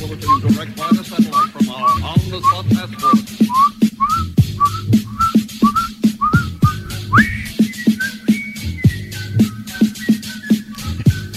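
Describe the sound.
A person whistles a bouncy, lively melody, the notes hopping in a steady rhythm over a thumping beat with brief rising slides near the end.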